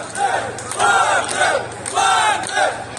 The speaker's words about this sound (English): It was very reminiscent, this is the second point, of the scenes we saw in Rostov on Don at the weekend. With Russians cheering, not Putin, but cheering Prigozhin.